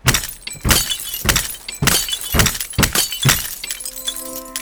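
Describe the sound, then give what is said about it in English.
Two sophisticated glass lenses trailing multicolored wires are crushed underfoot on the bank of the East River in a series of about eight loud crunching stomps at a steady pace, ending with shards tinkling and ringing briefly. No one speaks. “Finished with its destruction, the Tic Tac Man shuffled to the edge of the river, foot still trailing wires and broken glass.”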